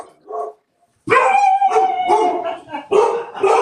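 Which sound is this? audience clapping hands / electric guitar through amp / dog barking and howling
dog barking and howling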